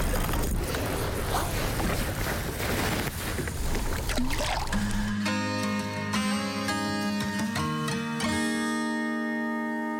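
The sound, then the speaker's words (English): A fishing boat motors across Keystone Lake during fishing practice, with rushing water and wind noise at first, then a steady, droning motor hum with a humming whine. No one speaks. “I'm gonna turn the boat like this.”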